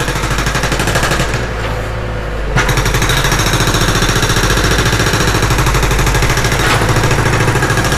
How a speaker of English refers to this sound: My own coveted Berlin quietude is being frequently disrupted by a huge drilling project on my street.